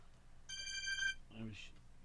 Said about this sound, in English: But, oh, there goes my phone.